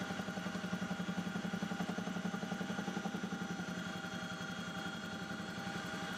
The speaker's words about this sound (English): It was a long, low helicopter ride out to the mountain near the town of Gardez.